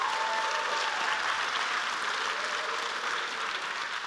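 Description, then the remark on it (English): A crowd applauds steadily for about four seconds, a dense, even patter of many hands clapping at a constant moderate level with no voices rising above it. “We can applaud that.”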